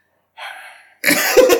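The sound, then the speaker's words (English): A person imitates a cough: a short breathy intake of air, then a loud, raspy, voiced coughing burst that sputters for about half a second. “He's a coughing.”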